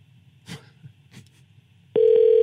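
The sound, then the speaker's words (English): After a quiet stretch with a few faint rustles, a loud, steady telephone ringing tone from a call to the Capitol switchboard abruptly begins near the end and holds unbroken and clear, with no talking. “Here we go. It's voice activated. Remember that. Well, be quiet. I'm trying not to let it ring.”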